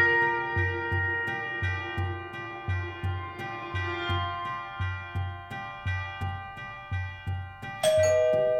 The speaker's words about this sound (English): He's here. He rang the doorbell? Get ready.